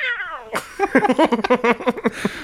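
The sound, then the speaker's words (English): A person gives one drawn-out, falling meow in imitation of a cat, fairly loud, followed immediately by a quick burst of voiced chatter or laughter. “He's just sitting there pulling it off his head. Meow!”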